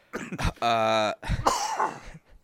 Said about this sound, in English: like I have like this barking cough, and now it's like today is like, oh, man, I kind of feel better with my cough, and then I start laughing so much, and I just can't do anything but cough.